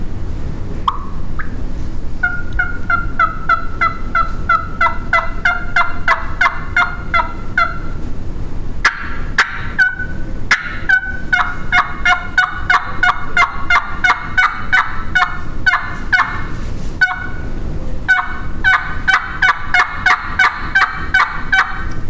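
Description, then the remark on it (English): A hand-operated turkey call plays a long run of raspy hen yelps in quick, rhythmic series with brief pauses between sets, loud with no talking. “when I'm going to get a little bit louder or do like a plain yelp and put just a little bit of rasp in it”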